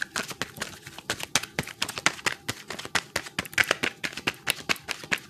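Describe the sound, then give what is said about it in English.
A thick deck of cards being shuffled, a steady run of quick, crisp flicking and snapping clicks in rapid bursts with no talking. “I think three more. Okay, three more shuffle.”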